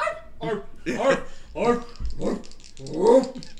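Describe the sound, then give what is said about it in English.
A human voice imitates a dog, starting with small chihuahua-like yippy barks and whimpers that grow deeper and louder over a series of rhythmic vocal bursts until it becomes a wolf, clear. “I now make a dog appears and I start off as like a little chihuahua, and then it just slowly gets bigger and bigger.”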